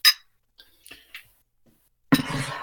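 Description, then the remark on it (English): A sharp glass clink, then a few faint taps of glassware, followed by a sudden gush of bourbon being poured into a glass. “does his famous gravity pour again.”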